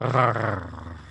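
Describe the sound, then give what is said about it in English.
A man lets out a single rough, throaty vocal growl lasting about a second, fairly loud, voicing a singer's signature growl with no other sounds around it. “But I used to really be able to do that growl perfect.”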